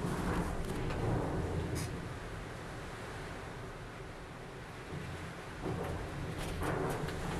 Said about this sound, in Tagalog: Ay, sa lakas ng bagyo. If naririnig nyo.